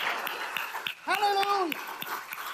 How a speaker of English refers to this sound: But I'm talking about clapping because you are applauding the King of Kings and the Lord of Lords. You're applauding what Jesus did and you're giving your greatest clap offering to the Lord. Come on, let's do that right now.